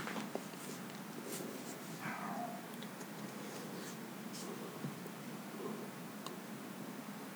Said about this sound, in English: There seems to be a dog around here somewhere. Based on that little bark I heard a second ago.